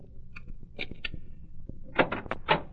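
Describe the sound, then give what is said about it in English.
A few faint taps are followed by a cluster of sharp, fairly loud knocks on a door, irregularly spaced, with no voices. “The sheriff and I squeezed into a closet when the knock came at the door.”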